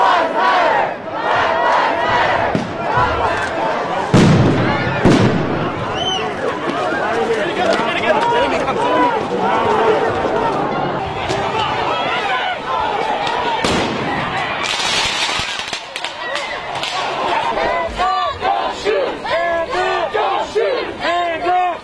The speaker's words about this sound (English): In response to the protests taking place two blocks from the White House, Trump called in the Secret Service and other federal agents to respond. That's when the bangs of tear gas canisters sounded.